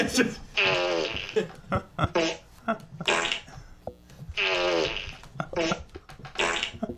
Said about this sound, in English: How many fart sounds do you have? Are they all the same? He's repeating like the same three.